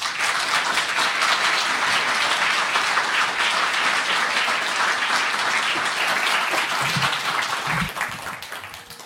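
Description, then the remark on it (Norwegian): An audience at a lecture series applauds warmly to welcome a history lecturer, a dense, loud wash of many hands clapping that holds for several seconds before easing off slightly at the end. “Så gi henne en varm applaus.”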